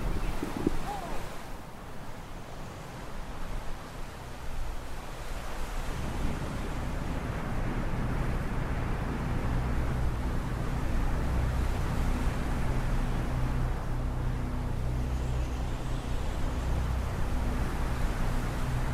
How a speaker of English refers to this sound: The rain subsides before the ride out to Ghost Island. The wind, however, is another story. The dark sky howls with laughter during the voyage out to the spooky playground, the ocean moving with heavy breath in the final approach.